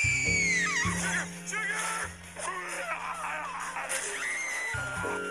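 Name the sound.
a girl screaming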